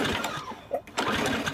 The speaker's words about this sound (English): I have put up with this stupid lawnmower barely running all season. I'm over it. It's gotta go. Your old mower barely runs.